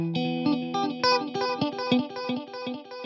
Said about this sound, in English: I just want to hear the naked, unadorned tone of the guitar.